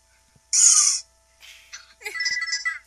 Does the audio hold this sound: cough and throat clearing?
no